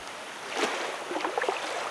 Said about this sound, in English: In the far corner, there is a waterfall. You wade through the water and go toward it.